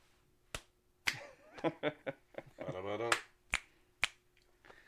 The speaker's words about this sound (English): Action. I like using my clapping noise now.